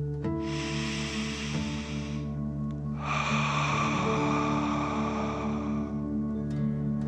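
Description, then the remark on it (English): Two long, forceful breaths rush out one after another, each a broad airy hiss lasting a couple of seconds, over a steady low hum, with no talking. They are deep breaths, drawn in through the nose and pushed out as if breathing fire. “Continue to feel the warmth of the energy stream, and let's take three more deep dragon breaths. Remember to breathe in through your nose, filling up your chest and belly, and then out, pretending you're breathing fire.”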